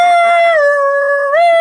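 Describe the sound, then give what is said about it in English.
A loud, steady alarm siren wails on its own, holding one pitch, dipping lower for a moment, then rising back up, with a rich, buzzy tone. “I feel like we need an alarm sound.”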